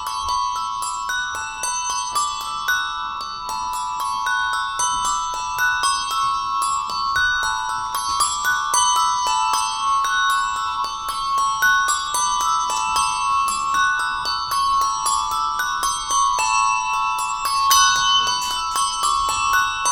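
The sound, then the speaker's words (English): Six numbered bells ring rounds continuously in a steady, overlapping peal, their bright clanging tones repeating in a regular rhythm for the whole stretch, loud with no voices. “Given each bell a number, so this is 1, 2, 3, 4, 6, right?”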